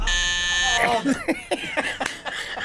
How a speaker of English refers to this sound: I've got to be fast with my buzzer. Gotta be fast with that, you know.